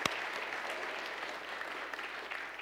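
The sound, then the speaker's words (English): A church audience claps steadily, giving God a big round of applause in celebration of Jesus being raised from the dead, a dense, continuous wash of many hands applauding at an even level, with no voices standing out above it. “Let's just give God a big round of applause.”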